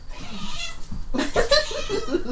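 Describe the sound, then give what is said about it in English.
A cat being held lets out a few strained, complaining meows, the wavering cries running together over a second or so after a brief quieter lead-in. “I don't think the cat likes you smothering.”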